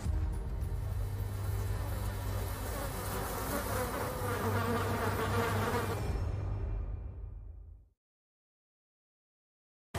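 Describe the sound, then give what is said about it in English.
A loud, dense insect-like buzzing drones steadily for about eight seconds, holding a fairly even level before cutting off abruptly into silence. No one speaks. “That sound, the buzzing I've been hearing, it's getting louder.”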